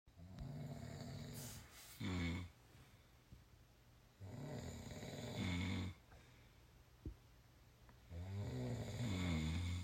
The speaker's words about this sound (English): Yeah, when did you start snoring?